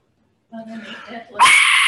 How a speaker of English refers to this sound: Try to keep Aztec heritage alive, and they hand-make a lot of Aztec artifacts and share the stories with them to whoever buys them, I guess. So that is an Aztec death whistle.